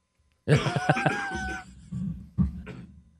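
A loud cough fit: a raspy, throaty burst of several rapid coughs, followed by a couple of shorter, quieter coughs after a brief pause.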